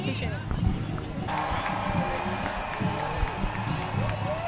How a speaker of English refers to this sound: You hear that cheering, guys? We are on 77th Street in New York City, headed toward Central Park West. We're going to keep on marching.